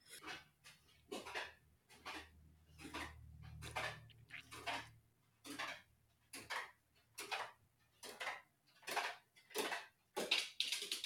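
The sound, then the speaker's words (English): An old dog walks slowly down hard steps, its paws and claws clicking and thudding in about a dozen uneven footfalls in a halting rhythm, with a faint low hum early on and no talking. “He made it down the steps. He's an old dog.”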